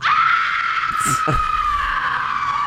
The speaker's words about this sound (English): and I'm Meryl Streep with a comically loud and very pandering scream.